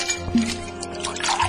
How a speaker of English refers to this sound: Welcome. Come on in. Pull up a stool and let me pour you a drink.